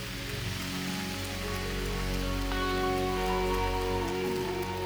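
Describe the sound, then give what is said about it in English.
An audience applauds with steady, dense hand clapping that holds at an even loudness for about five seconds, while sustained musical tones hum underneath. “Give them a hand clap.”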